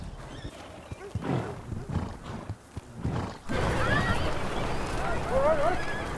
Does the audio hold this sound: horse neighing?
yes